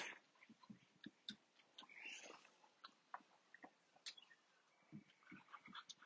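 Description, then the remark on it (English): A puppy gnaws on a bone, making irregular crunchy scrapes and clicks with brief pauses between bites, fairly quiet and with no talking. “The pup has discovered another bone to gnaw on.”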